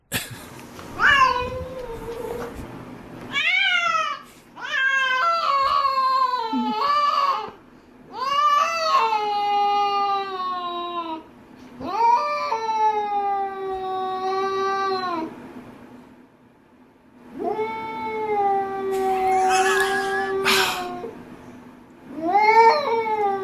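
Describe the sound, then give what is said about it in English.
Cats yowling loudly during mating, a series of long, wavering, drawn-out wails, about six in a row with short pauses between, harsh, with no talking. “Well, she said they had cat sex.”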